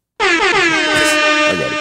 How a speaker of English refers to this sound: Now, let me give an air horn or something, man. Hold up.